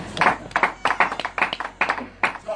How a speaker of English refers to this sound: My goodness. Oh, clap for the Lord.